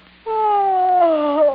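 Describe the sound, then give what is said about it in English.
A woman sitting up in bed gives a loud, drawn-out yawn: one sustained voiced tone that begins abruptly and glides slowly downward in pitch for over a second, with no talking. “Trixie, rousing herself with an effort, sits up in bed and yawns loudly.”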